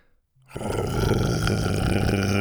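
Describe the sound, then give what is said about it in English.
A dinosaur growl from Buck, in a shed, bursts in after a brief silence, then holds as a loud, deep, rough rumble with a gravelly, throaty texture, steady for about two seconds, as Buck chomps onto a blanket and thrashes it. “Buck was growling now.”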